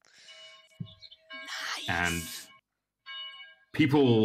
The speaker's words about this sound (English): And as so, the bell has rung.